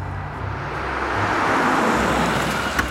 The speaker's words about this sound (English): Zala and her dad pulled up to the shop in their old red pickup truck.